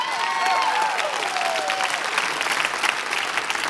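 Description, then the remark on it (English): An audience claps steadily, a dense wash of many hands with a few whoops and cheers rising over it, holding fairly loud throughout. “You have no idea how glad I am that you clapped at that part.”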